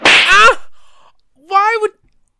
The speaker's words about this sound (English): That's one slap. Take it away.